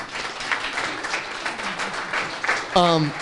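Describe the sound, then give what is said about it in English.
A crowd applauds with steady, dense clapping that continues throughout, and a single voice calls out over it near the end. “Go ahead, give them a round of applause.”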